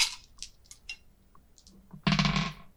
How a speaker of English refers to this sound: Why don't we have a roll off for it on the D12? Love it. To see who goes first.